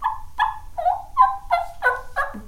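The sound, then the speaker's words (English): A person imitates a turkey's purring call by fluttering the lips and tongue: about eight short, raspy, harmonic-rich notes in a steady rhythm, ending on a lower note, with no talking over it. “When the turkey's coming, like I said, they're always making noise.”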